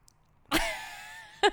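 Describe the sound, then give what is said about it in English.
Two coughs with no talking: a sharp, harsh burst with a raspy tail that fades slowly, then a shorter, fainter cough about a second later. “So yesterday, sorry for my cough.”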